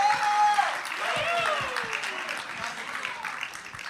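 An audience at a Good Friday service breaks into dense, steady applause for a musician, lasting about four seconds, with a few whistles or whoops rising over the clapping before it eases off slightly toward the end.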